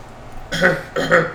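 human body sound, cough

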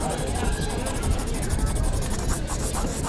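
tool, pencil drawing on paper

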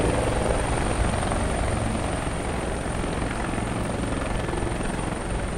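vehicle, helicopter landing

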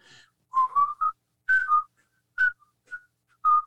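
human body sound, man whistling a tune

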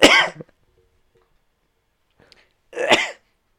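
human body sound, cough into the microphone

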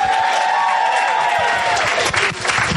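crowd, audience clapping and cheering

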